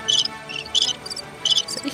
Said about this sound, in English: I think the crickets go on a loop.